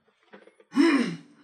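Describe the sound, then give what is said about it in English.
One fairly loud cough with a rough, throaty edge lasts about half a second and then fades. Faint, soft murmuring comes just before it. “Sorry, I'm so used to having controls of like, I mute it whenever I cough.”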